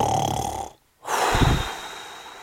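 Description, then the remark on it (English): A voice mimics snoring: a long raspy inhale, a brief silent pause, then a rumbling, throaty snore on the out-breath that fades away. No words are spoken. “And, you know, I'm still snoring.”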